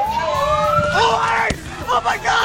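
In a played video, a man with his cell phone out lets out a loud, sustained scream that climbs steadily in pitch as a woman gets in front of a barely moving car, followed by a sharp click and a few short, strained vocal bursts over background noise.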